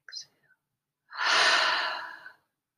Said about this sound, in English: And exhale. Two more of those. Now let's try to make this last exhale noise the loudest of the three.